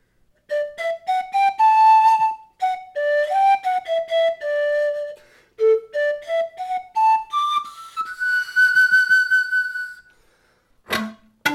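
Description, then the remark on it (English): Curved, single-row Eastern European pan pipes play a breathy, airy melody in quick stepwise runs, then climb to a long held high note; no voices, with a short sharp burst of noise at the very end. “notice that it's curved, and it's one row.”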